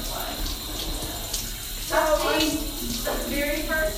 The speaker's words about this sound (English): I'm so sorry I'm interrupting, but I need to flush the toilet.